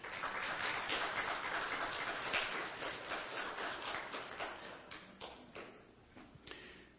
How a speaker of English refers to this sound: Give them a hand clap for me, please.